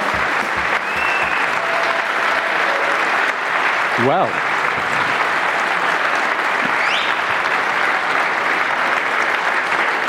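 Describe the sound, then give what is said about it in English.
A crowd applauds steadily and loudly throughout, a dense continuous wash of clapping from a full live audience at a car talk show in London, with a voice briefly speaking over it partway through. “That was stage three clapping.”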